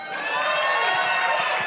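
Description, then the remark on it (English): A crowd at a live show cheers loudly and steadily for Michael, a dense wash of many voices whooping and shouting together without a break, holding at full volume from start to finish. “All right, everybody, another big cheer for Michael.”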